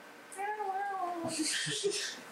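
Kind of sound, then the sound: vocal imitation, person imitating cat meowing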